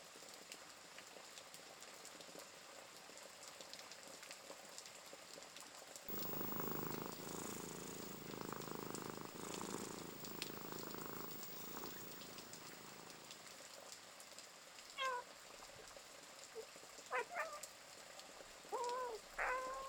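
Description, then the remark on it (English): A cat purrs, a steady rhythmic rumble that swells in over a soft background hiss and lasts several seconds before fading, followed by a few brief high chirps. “deep breath in, holding it, and as you release it out, you take a moment to enjoy observing the cozy cat before continuing on.”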